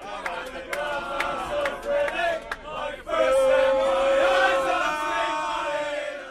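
A lone fan sings a slow football anthem on a bus, drawing out wavering notes over rumbling noise and sharp clatters, the voice growing louder and steadier halfway through.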